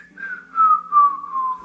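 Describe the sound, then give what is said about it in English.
A person whistles an imitation of a bird call: one long, unbroken tone that slides slowly downward in pitch, fairly loud over a faint low hum. “And you hear the bird go, "Weep!"”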